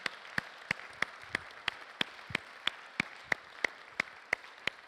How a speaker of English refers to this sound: We want to say thank you to our deacons and our administrative team members and how they have loved and served our church. So, church family, would you with me just applaud them and say thank you?